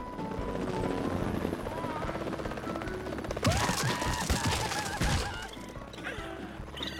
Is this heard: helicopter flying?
yes